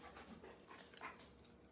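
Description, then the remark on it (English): Dogs pant in quick, steady breaths, a breathy rhythmic huffing that carries on without pause, with a faint whimper slipping in at moments. “can you please come get these dogs?”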